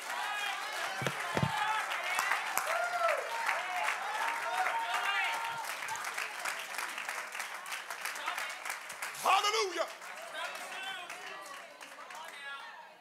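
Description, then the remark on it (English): An audience claps hands steadily for over ten seconds, a dense crackle of overlapping claps mixed with many raised voices calling out, briefly swelling louder before tapering slightly. “I need someone right now to clap your hands and lift your voice if you know that Jesus is able to do it.”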